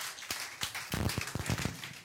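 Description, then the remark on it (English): A group of people clap together as a clap offering to the Lord, a dense, steady patter of overlapping claps with bright, sharp transients, fairly loud and sustained for the full couple of seconds with no talking. “Somebody give the Lord a clap offering.”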